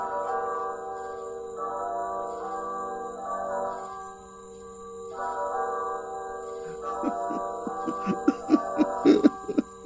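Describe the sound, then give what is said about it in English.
A church bell tolls in the distance late at night over a graveyard, several slow, resonant strikes humming and lingering between blows, with a quick run of sharp ticking clicks near the end. No one speaks. “As Saint-Saëns weeps over the grave of his young son, a church bell tolls in the distance.”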